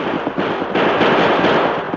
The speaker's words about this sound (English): I never seen such shooting. He knocked the guns right out of our hands.